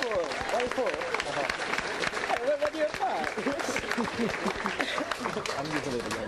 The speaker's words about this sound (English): Okay. Please give another warm round of applause. Thanks.